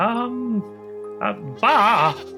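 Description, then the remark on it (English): A person imitates a goat's bleat, giving a few voiced bursts that end in a loud, wavering 'baa' lasting about half a second. “All of these reflections of other goats are talking back at you as well.”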